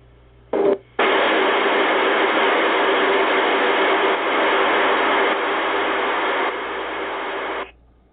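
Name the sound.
radio static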